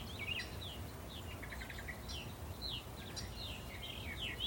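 Several birds chirp and twitter in a tree in quick, overlapping calls throughout, bright high notes scattered over a steady low outdoor rumble, fairly quiet.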